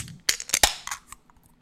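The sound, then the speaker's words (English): A beer can cracks open with a few sharp metallic snaps in quick succession, followed by a brief fizzing hiss that fades into small clicks, as the beer is opened to be drunk straight from the can. No one speaks. “I haven't done a beer ASMR in a non-1050 Sips episode in a long time, but here we are.”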